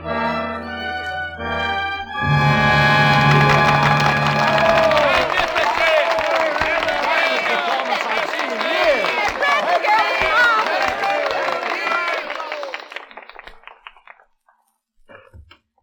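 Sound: theatre audience applause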